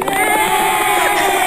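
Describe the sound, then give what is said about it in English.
A dense burst of applause sound effect, many hands clapping in a steady, noisy wash at a fairly loud level that holds evenly for about a second and a half. “hit the claps.”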